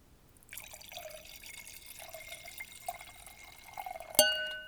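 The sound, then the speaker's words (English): Wine pours steadily into a glass, a gurgling trickle lasting about four seconds, ending with a single bright, ringing clink of glass. “Pretty sure there's going to sound like someone peeing, but I promise it was wine going into a glass.”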